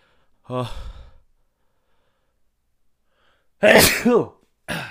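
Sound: sneeze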